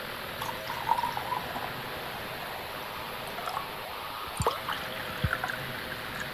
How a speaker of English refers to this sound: Pour one in. I'm gonna, as usual, do a dirty pour, aka just kind of sloppily pour some so you can get some audio in here.